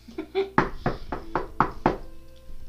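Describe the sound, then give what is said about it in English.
Six firm, evenly spaced, fairly loud knocks on Saffield's bedroom door, preceded by a brief murmur of voice; the knocking stops and a quiet room tone follows. “I will go and knock on her bedroom door.”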